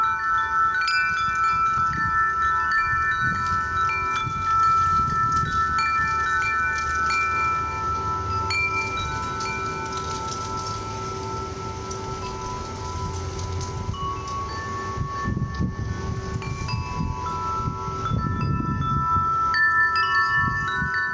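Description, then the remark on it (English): Wind chimes ring continuously at Angel's Rest pet memorial in Kanab, Utah, with overlapping metallic tones at many pitches sounding and fading over a steady, rain-like wash and low rumble. No one speaks. “If you ever get the chance to go to Kanab, Utah, I highly recommend taking a moment to go to Angel's Rest and feel the spirit of the animals surround you while you listen to the wind chimes.”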